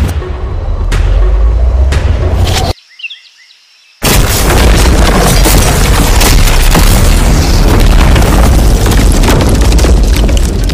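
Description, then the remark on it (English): A few sharp cracks over heavy low rumble, a sudden brief silence, then a massive explosion erupts into a long, loud roaring blast of noise and debris that holds for several seconds, as a supposedly explosion-proof car with mannequins and Feastables chocolate inside is blown up; the car survives with minor scrapes and a dented window. “The car actually survived the blast with only a few minor scrapes.”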